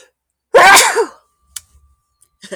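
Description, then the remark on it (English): A single loud sneeze, loud enough to make chimes chime, bursts out sharply and trails off within about half a second, followed by a few faint clicks and rustles in the quiet. “I sneezed loud enough to make the chimes chime.”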